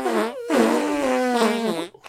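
A buzzy, mouth-made fart noise: a short burst, a brief gap, then a longer, wavering blast lasting over a second before it sputters out.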